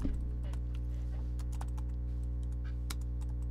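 Irregular, quick keystrokes clatter on a computer keyboard, fairly quiet, over a steady low electrical hum with no one speaking.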